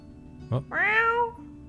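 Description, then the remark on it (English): A cat gives a short chirp followed by one drawn-out, rising and falling meow, clear against a quiet background with no talking. “meowing at you.”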